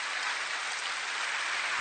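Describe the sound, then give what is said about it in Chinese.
A crowd claps steadily in applause given to God, producing a dense, continuous wash of hand claps with an even loudness throughout and no voices. “弟兄姊妹，把掌声归给我们的神吧，弟兄姊妹。”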